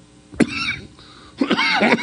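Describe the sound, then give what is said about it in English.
A man coughs: one sharp, abrupt cough, a short pause, then a longer, rougher cough with a throaty, voiced edge. “And then I think that, hang on, I got a cough.”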